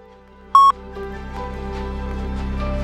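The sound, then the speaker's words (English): A single short, loud electronic beep at a steady mid-high pitch, like an answering machine tone, followed by a quiet hum with faint tonal noises. “Comments after the beep. Here's the beep.”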